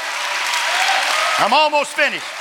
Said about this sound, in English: I think somebody ought to get on their feet right now and clap their hands because we have a covenant-keeping God in our lives.